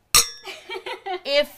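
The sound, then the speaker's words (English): A single bright glass clink rings out near the start as glasses touch in a toast, followed at once by a few quick, murmured voices. “We love it. We love it. Cheers. But cheers.”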